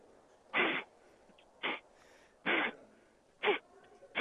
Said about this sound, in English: Tell me what that sound is. I know what that is. That's blowing gnats out of your beard.